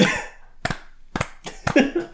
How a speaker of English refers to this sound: I'm too drunk for that. Let's do a slow clap.